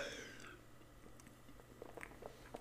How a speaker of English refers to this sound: And I'm going to go for a sip of my beautiful GT's Synergy Raw Kombucha.